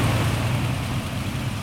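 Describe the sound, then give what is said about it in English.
A plane engine roars loudly and steadily as the throttle is opened up, a deep rumbling drone with a broad hissing wash on top, holding the same level throughout with no voices. The plane is in fog by 100-foot cliffs along a spit of water. “Warn me when you're gonna hit that throttle.”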